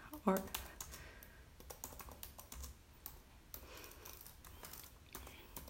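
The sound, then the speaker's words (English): Fairly quiet keyboard typing done with one hand: a steady patter of uneven clicks and taps running throughout, with a short vocal sound near the start. “I'm typing with one hand right now, so it's, you know.”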